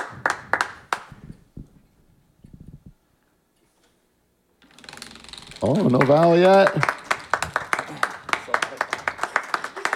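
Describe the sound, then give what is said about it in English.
A studio audience claps in quick bursts, with short pauses between, while voices talk over it and one person exclaims briefly in the middle. “This is really Wheel of Fortune. It really it's mostly is a lot clapping.”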